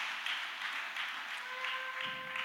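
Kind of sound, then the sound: crowd, audience clapping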